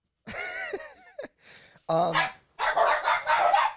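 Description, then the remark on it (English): Dogs bark excitedly as people get up, in a rapid string of loud barks and high yips, with short gaps between the bursts and no talking over them. “Sorry, dogs.”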